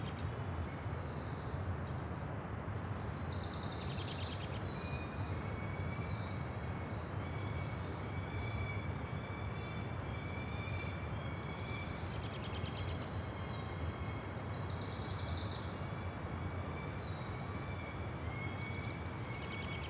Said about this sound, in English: I hear a really cool bird I want to introduce to you. Let's go over the hill and down into the forest. Hear that jumble of fast notes that kind of seems like it goes on